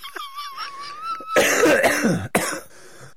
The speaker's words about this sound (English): Let me clear my throat.